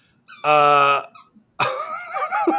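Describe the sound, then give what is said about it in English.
Two squeaky cries from household pet animals, with no talking: first a steady, loud, buzzy whine lasting about half a second, then, after a short pause, a rougher, warbling squeal that wavers in pitch. “Squeak, squeaking, squeaker. Oh my God. Why always my animals?”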